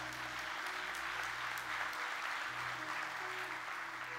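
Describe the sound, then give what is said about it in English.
A church audience gives the Lord a hand clap, steady, sustained applause, a dense wash of many overlapping claps at an even loudness, with a low hum underneath and no one speaking. “Can we give the Lord a good hand clap today?”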